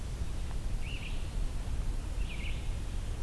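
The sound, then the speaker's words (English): Two red-shouldered hawk calls, each a short, slightly slurred cry, spaced about a second and a half apart over a steady low rumble of outdoor background noise. “A couple of red-shouldered hawks.”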